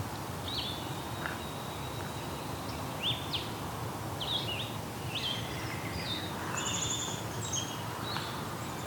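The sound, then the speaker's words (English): A blue-headed vireo sings a series of short, sweet, slurred phrases separated by brief pauses, fairly high-pitched and moderately loud over a steady hiss of background noise. “Okay, we've got a blue-headed vireo singing here. Very sweet-sounding vireo song.”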